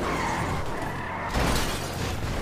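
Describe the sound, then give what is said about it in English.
A video game car skids noisily, then crashes with a sudden burst of impact and scraping, tire screech and engine roar continuing loud throughout, with no voices. “Oh my god, my car is gonna... My insurance.”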